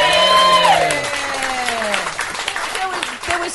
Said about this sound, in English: Oh, so you're busting for another round of applause after this one.